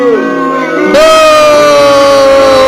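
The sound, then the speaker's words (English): A loud, drawn-out vocal boo, one voice holding a long steady jeering tone after a short sliding cry, strong, like someone imitating a booing crowd. “We booing the shit out of her, okay?”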